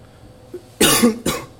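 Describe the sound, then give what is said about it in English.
Two harsh, raspy coughs from bronchitis in quick succession, the first longer and louder, the second shorter, preceded by a faint throaty catch. No one speaks. “This bronchitis is John Oliver, if you're listening.”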